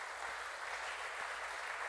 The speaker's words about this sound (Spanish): Denle un aplauso a Dios. Eso es grande.